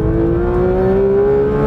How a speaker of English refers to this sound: 9,000 RPM shift. And I'm laughing at the fact that I haven't even cranked up the mode yet. Let's go track mode. There we go. Listen to that. Track mode, it shifts at 9,000 RPM in every gear. The noise in this car is absolutely spectacular.